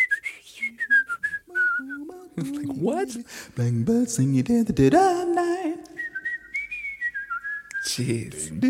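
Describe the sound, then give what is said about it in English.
A bright, high whistled melody glides between sustained notes, then gives way to a man singing a lyric line before the clear whistling returns, light and quick. “The whistling that he's jumping to, it's all so light and it sounds effortless”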